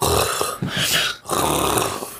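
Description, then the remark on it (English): A voice imitates wheezy, labored breathing of a man with a permanent breathing problem from a cat allergy: two long, rough, congested breaths with a short gap between them, loud and raspy, with no words spoken. “He had this permanent breathing problem because of this.”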